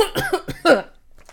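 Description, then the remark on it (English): A person coughs for emphasis: a quick series of short, throaty coughs, the last burst the loudest, followed by near silence with faint breathy noise. “Coughing for emphasis.”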